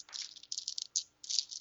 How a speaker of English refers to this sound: Let me get my dice out. Hang on.